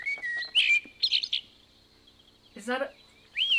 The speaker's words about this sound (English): Is that a blackbird, the first bird we hear on the Dawn Chorus? Spot on, absolutely. That's the blackbird.